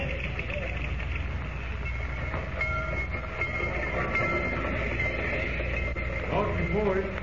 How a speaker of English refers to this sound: Thank goodness we're here at last. I've never been on such a dirty train.